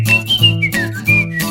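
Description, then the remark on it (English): A person whistles a short, wavering tune of several sustained notes that slide between pitches, fairly loud, with no talking. “I will whistle.”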